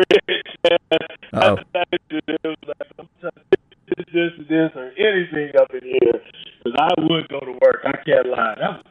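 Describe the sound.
A voice over a phone line breaks up and garbles, choppy with rapid dropouts and stuttering fragments before the thin, narrow-band speech steadies into continuous talk.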